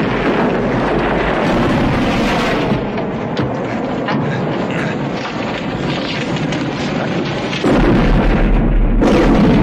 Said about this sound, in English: I love that you can hear the car exploding before the car explodes. Yeah. It's like, it sounds like they had about 10 windows in that car and a bag of explosives, yet the car doesn't explode.